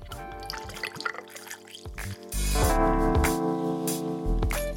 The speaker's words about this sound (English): So you simply fill a highball glass with fresh cubed ice. Add 50 ml of malt riot. Then top that with ginger ale.